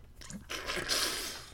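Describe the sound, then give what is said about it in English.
A wet, hissing spray of water blown out of the mouth, starting with a brief sputter and swelling into a loud, breathy burst of mist lasting about a second. “Can you do the thing where you swallow some water, where you take a mouthful of water and then spray it out?”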